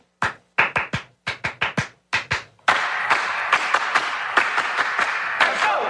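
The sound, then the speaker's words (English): Crisp hand claps from a 1962 song beat out a steady rhythmic pattern in short groups, then a loud, dense burst of music kicks in with the claps continuing over it. “Pablo, do you remember this clap?”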